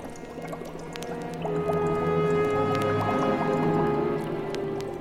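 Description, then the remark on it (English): A thick liquid bubbles and pops steadily in a cauldron, wet plops and drips over a low, eerie droning hum that swells slightly and holds throughout, with no voices. “Come you closer and stand before my bubbling cauldron.”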